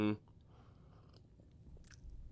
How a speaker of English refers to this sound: I'm going to get a little sip. I'm getting a little dry mouth action.